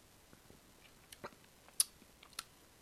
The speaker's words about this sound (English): So I'm going to go in for the first sip, if that's all right with you.